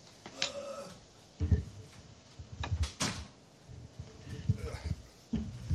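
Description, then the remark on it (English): Footsteps as someone runs across the room and handles the door, then a sharp thud as the door swings shut, followed by a few more soft knocks and shuffling. “I got to close this door.”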